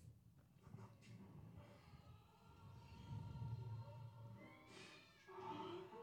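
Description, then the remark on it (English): A cat meows repeatedly in drawn-out, wavering cries over a low rumbling background, the yowls rising and falling across several seconds with a sharper call near the end. “Don't fucking eat that cat.”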